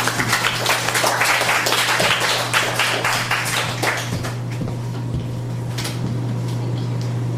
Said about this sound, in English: let's give another hand.